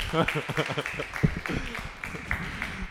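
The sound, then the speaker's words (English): A comedy show audience at the Comedy Butcher breaks into applause for themselves, a dense, steady patter of many hands clapping, mixed with cheering voices, holding at a fairly even loudness for about three seconds. “This time, give yourselves a round of applause.”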